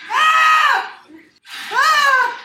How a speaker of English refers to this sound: I screamed at one part and I like almost never scream. Cut that in right here.